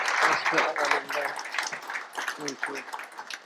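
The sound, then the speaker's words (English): An audience breaks into dense, steady applause, a crackling wash of many hands, with voices calling and cheering over it throughout. “Massive round of applause for these guys.”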